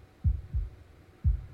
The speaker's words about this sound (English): Otherwise, someday, you will hear your last heartbeat, and it will be over.